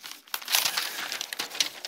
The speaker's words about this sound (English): Let me get a piece of paper for my notes.